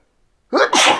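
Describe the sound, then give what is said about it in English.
After a moment of silence, someone lets out a single loud sneeze: a short voiced intake and then a sharp, explosive burst of breath. “Bless you.”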